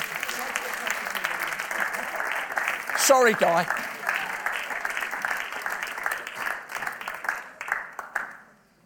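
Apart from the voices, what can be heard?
audience clapping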